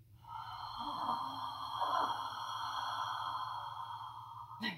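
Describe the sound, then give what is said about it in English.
A voice imitates the heavy 'tragic breath' of a theatre company's intense acting warm-up: one long, drawn-out, raspy breath held steadily for several seconds, ending with a short, sharp intake. “It's truly bizarre and alien, but it involves this heavy breathing, this sort of like...”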